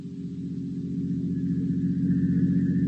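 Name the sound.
motor car approaching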